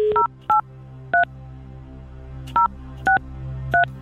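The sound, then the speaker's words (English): Six short two-tone telephone keypad beeps, clear, tapped in two quick groups of three with a pause between, over a low steady background hum, as a phone number is dialed again after being engaged. “I rang the first one, Now we go back and we try the first one again.”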